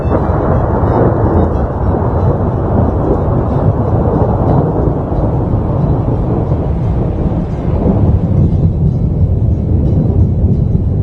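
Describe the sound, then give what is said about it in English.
Loud, continuous thunder played from a sound button rumbles low and heavy for the whole stretch, a steady rolling roar with no breaks and no voices over it. “I have thunder.”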